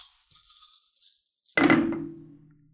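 A handful of dice, including a D8, rattles in a crisp, jittery shake for over a second, then lands with a loud, sudden clatter that rings and fades away. No one speaks.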